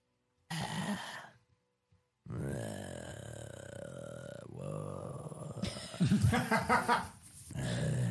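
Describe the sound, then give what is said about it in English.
A voice lets out a long, rough, guttural howl in drawn-out, wordless bursts, growling and rasping, rising into a louder pulsing stretch near the end, like a made-up beastly language. “Howls something in a weird guttural language you don't know about.”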